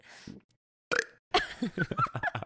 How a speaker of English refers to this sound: And I can like let it build up, and then I'll have like a like a really loud burp. Like, wait, was that a fake burp? That sounded like a okay. That was real.